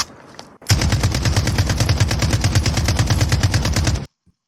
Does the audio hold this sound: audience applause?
no